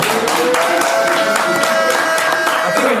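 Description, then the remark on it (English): A crowd claps steadily for about three seconds, a dense, even patter of many hands, with a faint murmur of voices or cheering mixed in underneath. “I think you should clap for that, goddamn.”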